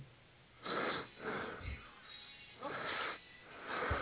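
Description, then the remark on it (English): Heavy, raspy breathing from a caller in Chicago comes through a thin, band-limited phone line, four loud breaths in a steady in-and-out rhythm with no talking. “Well, I got some breathing on the line.”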